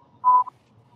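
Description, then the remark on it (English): A steady, mid-high censor bleep tone covering a swear word sounds for about a fifth of a second, followed right away by a much shorter blip, standing alone over a faint low background hum. “She gets two beeps because I didn't see the D word.”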